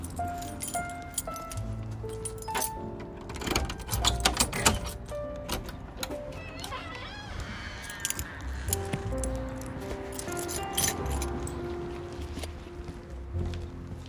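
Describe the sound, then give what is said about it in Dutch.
Keys jangle and clink repeatedly as another key is tried in a still-closed door lock, with scraping and clicking, the metallic rattling coming in short bursts over a faint background hum. “Andere sleutel.”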